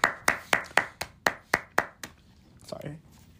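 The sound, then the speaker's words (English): A quick run of about nine sharp, evenly spaced hand claps, crisp and steady in rhythm, followed by a short vocal sound after the clapping stops. “Wait, can I clap?”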